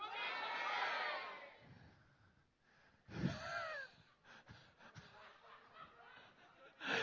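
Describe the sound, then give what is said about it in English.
A crowd of about 400 people yells their favorite ice cream flavors all at once on a count of three, a loud, overlapping roar of many voices, which fades into scattered laughter and murmuring before another burst of cheering. “So what we're going to do is we're going to listen what 400 voices sound like screaming out your own flavor.”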